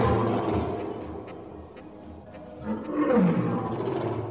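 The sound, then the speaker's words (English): A lion roars in a long, rumbling bellow, building to a louder, deep groaning swell near the end, heard alone without any talking. “King of kings and lord of lords, the lion say.”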